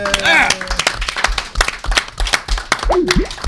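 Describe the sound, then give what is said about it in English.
A crowd claps steadily in a dense burst of applause, with whoops and a few shouted cheers rising over the clapping throughout. “Round of applause”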